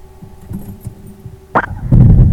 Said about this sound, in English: Alright, the Rotax engine fires up right away, and there it is. It started, and we get straight up to the ground idle, or the ground operation RPM, should I say, 2000 RPM, and it's building up a bit of revs.